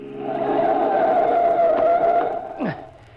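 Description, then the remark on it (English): A car skids hard with a loud, sustained tire screech lasting a couple of seconds as a truck cuts it off, ending in a brief downward squeal as it jerks to a stop, then quiet. “Oh, that crazy truck driver cutting us off.”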